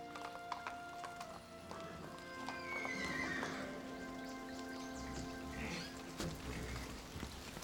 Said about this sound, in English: Aw, horsies.